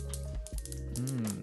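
Quick, crisp clacks from an EDC fidget toy fire in a rapid, slightly uneven series over a steady low hum in the background.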